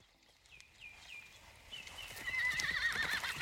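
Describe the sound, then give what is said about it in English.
A horse whinnies in a rising, shaky trill that grows louder toward the end, with a steady clip-clop of hooves beneath it and no voices. “When can we do another one like the horse?”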